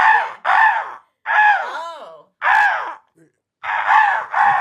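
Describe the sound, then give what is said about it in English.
A person imitates a crow's caw, giving six harsh, nasal calls in quick succession with brief gaps between them, loud, with no other talking. “I don't like how you abandoned your awe and went to car.”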